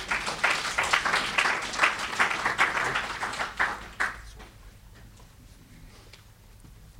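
An audience applauds with a dense patter of many hands clapping for about four seconds, then the applause fades quickly into quiet room noise with a few stray claps.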